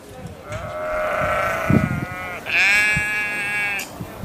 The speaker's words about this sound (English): We're set in the breathtaking grounds of Tassin Park, and there's a hum of wildlife all around, including sheep, as you can hear, deer, and of course, incredible plants.